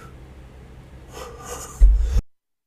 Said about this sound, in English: Sorry, everybody. Can't stop coughing for some reason. Just dying a little bit.